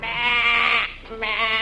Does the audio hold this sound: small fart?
no